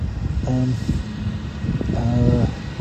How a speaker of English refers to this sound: No ghosts. Although that poor gardener is still mowing the lawn. So, ghost or not, I feel sorry for him.